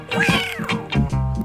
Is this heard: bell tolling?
no